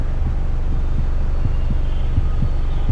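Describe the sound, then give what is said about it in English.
A slowing heartbeat: low, muffled thumps repeating at a moderate, steady pace over a constant low hum, with no voices. “Your heart rate has already slowed slightly.”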